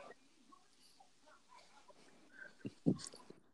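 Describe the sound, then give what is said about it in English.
Quiet chewing of a cheesesteak, with soft wet mouth noises and a couple of sharper smacking bursts near the end, no one talking. “Man, boy, chew your fucking cheese steak and then talk.”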